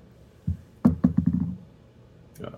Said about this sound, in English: Every single time I hear that noise of the dice dropping, my heart just, like, sinks. And I'm just like, oh my god, what is it gonna be?